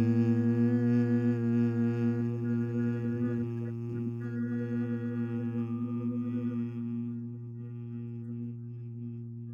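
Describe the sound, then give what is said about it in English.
A group hums together once out loud as an exercise, in one long, steady, low-pitched drone that holds the same note for nearly ten seconds, easing off slightly toward the end, with no words spoken. “You got a nice long hum there.”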